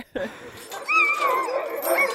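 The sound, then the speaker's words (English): A sled dog puppy, being held by a person, whimpers in high, wavering whines that slide up and down, with a few short yips breaking in over about two seconds. “You're a dog whisperer. You've got him pretty comfortable there.”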